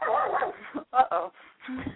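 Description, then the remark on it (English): A foster dog gives a few short, excited barks and yips in quick succession, with talking mixed in around them. “My Someone foster dog is barking. He's very excited.”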